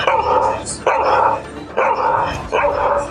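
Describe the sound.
A person imitates barking dogs with four loud, drawn-out bark-like yelps, coming in a steady rhythm with only brief gaps.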